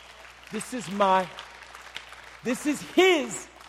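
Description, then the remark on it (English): An audience claps steadily while scattered voices whoop and cheer in rising, gliding shouts, with two louder bursts of cheering standing out over the applause. “That's all right, you can clap.”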